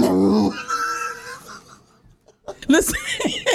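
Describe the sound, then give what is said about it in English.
A person voices a strained, hoarse imitation of a dog barking and snarling, loud, breaking off into a brief pause before a second burst of rough, yelping growls. “Listen, yo, listen, you are not allowed to bark or whatever the fuck you doing, because that ain't even no bark, yo.”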